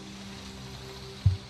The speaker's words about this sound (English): So I got extreme rain pouring.